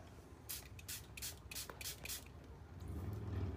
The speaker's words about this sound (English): So I take a brain enhancing spray, an energy boost, and these are just sprays that I literally go like this, shake it up.